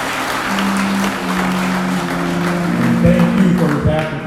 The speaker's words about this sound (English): Big round of applause.